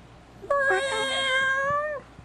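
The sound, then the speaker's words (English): A person imitating a cat in a played video clip gives one long, drawn-out meow, loud, holding a steady high pitch for about a second and a half before trailing off, with no talking around it. “If I was a cat, I would be like this.”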